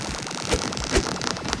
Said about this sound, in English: Can't talk now. That's my cue to turn into a windstorm. Because I transform into things. It's my superpower.